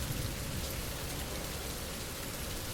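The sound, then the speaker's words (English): Heavy rain pours down steadily and loudly, a dense continuous hiss with drops drumming on a tiny shop awning overhead, with people sheltering beneath it and no talking. “I'm huddled under this tiny shop awning, me and three other people, all trying to shelter from this downpour.”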